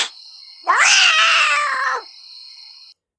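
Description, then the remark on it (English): A single loud, drawn-out meow from the show's cat, Mr. McTuggins, lasting over a second, rising and then falling, set against a steady high-pitched tone that continues before and after it. “McTuggins Tales is a segment where we try to entertain our show cat, Mr.”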